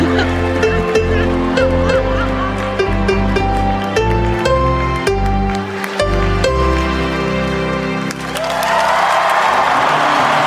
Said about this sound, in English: The chicken got a standing ovation, by the way.